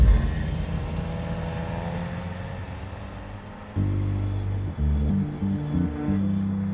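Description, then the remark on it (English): A car engine idles with a low rumble, then jumps louder and revs in uneven surges as the car is started and driven away, with no talking. “And I just started my car and drove away.”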